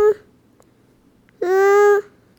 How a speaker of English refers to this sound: This cat is very, very noisy. Maybe I should get her something to eat.